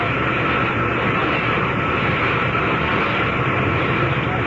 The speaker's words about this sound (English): Until Zaslow came down to get me in a big helicopter.